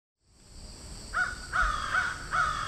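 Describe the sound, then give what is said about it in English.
A large crow (genus Corvus) on a sidewalk caws four times in a steady, evenly spaced series, each call harsh and clear against a constant outdoor background hiss. “There are a number of crows flying about here.”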